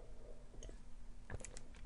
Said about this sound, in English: This is, hold on, sip of tea.